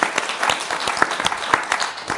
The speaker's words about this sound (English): Let's have a final round of applause.